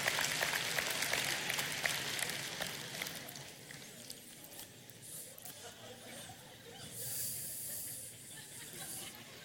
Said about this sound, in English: Y'all can clap for the fish.